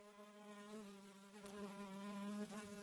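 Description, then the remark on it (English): A big fly buzzes steadily as it approaches, a droning, harmonic-rich whine that swells slightly louder over about three seconds. No voices are present. “As I scanned the horizon, I could hear a faint hum approaching.”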